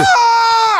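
A single loud, high-pitched human scream at the top of the lungs inside a new studio, held steady for just under a second, its pitch dipping slightly as it cuts off.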